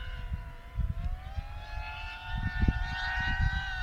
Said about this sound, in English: I just clicked a video to find, like, the fastest drone that you can get.